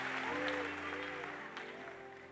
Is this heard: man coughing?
no